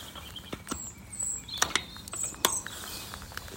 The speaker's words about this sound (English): Just bolting the door.